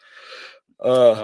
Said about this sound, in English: I can't stop yawning.